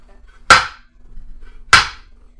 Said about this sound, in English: George hammers away at the lock and it breaks.